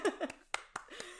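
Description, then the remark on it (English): A short, sparse burst of applause: about five sharp hand claps at an uneven pace, mixed with brief voices or laughter at the start and end. “And I am so proud of, let's give a round of applause for everybody out there keeping the mess on the DL.”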